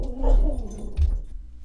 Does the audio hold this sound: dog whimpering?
yes